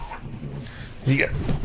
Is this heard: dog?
yes